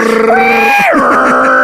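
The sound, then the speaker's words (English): A voice mimics a dial-up modem, holding steady electronic-sounding tones that slide downward midway into a buzzing, warbling screech, loud and continuous for under two seconds. “They all make this sound like modem.”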